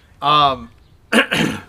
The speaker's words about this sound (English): Those are real dog sounds, by the way, too. They're not faux dog sounds. Not faux dog sounds.